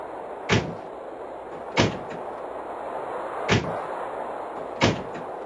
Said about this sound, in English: We're watching the door go over and over again. Slam and slam.